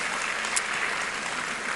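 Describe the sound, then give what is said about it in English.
A steady burst of applause at Church of Our Savior, welcoming back the senior pastor and members returning from Israel; many hands clapping in a dense, even wash of sound with no voices on top, holding at a constant moderate loudness throughout. “So shall we give a round of applause to welcome them back?”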